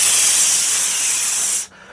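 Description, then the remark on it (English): A voice imitates air hissing from a lorry after its exhaust brake was switched on by mistake while driving in the rain: a loud, steady, breathy hiss held for over a second and a half, then cut off abruptly. “I'm losing air. I'm losing power.”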